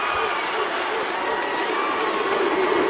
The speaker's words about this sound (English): There's a piece of this where the crowd starts to, I mean, they're obviously they're going nuts, but there's a piece of this at the end that's really impressive.